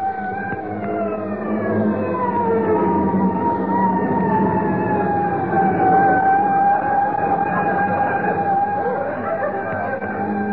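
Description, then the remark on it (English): A fire engine siren wails steadily as fire engines come to a fire, its high tone sliding slowly up and down over a low engine rumble, staying loud throughout. “Why, I could put out this fire with a handful of water just before those guys get here.”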